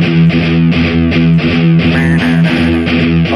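A heavy metal song intro plays loudly, with a thick, distorted guitar riff chugging in a steady, driving rhythm. No voices are heard.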